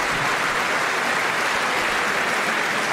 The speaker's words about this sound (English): Another applause line. There's Alexandria Ocasio-Cortez. Still works.